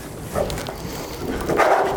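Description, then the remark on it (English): A dog with a lot of energy whines and gives short, excited barks, with a couple of higher-pitched yelping bursts standing out over a steady, noisy background. “We're going to talk about a little energy here. This dog has a lot of energy.”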